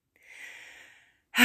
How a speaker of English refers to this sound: Excuse me, let me clear my throat.